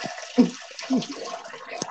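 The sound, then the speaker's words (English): A toilet flushing in a restroom, with a steady rush of water and a couple of brief gurgling surges, fairly quiet, with no one speaking. “Flushing the toilet.”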